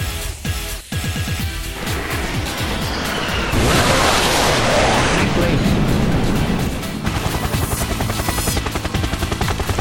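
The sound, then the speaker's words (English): Dense, loud game-style combat noise: a helicopter's rotor drone with rapid gunfire bursts and a burst of explosive roar in the middle, voices speaking over the din. “The chopper's shooting at us.”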